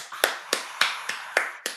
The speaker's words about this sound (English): Clap it up for …, everybody. Clap it up. Clap it up.